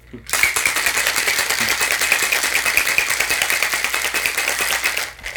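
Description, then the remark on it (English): A cocktail shaker holding Four Roses bourbon and Cointreau rattles hard with ice in a fast, steady rhythm for about five seconds, loud, starting abruptly and stopping just as suddenly. “We shake it up.”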